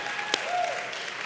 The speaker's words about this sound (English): I think that's awesome. I give you guys a round of applause.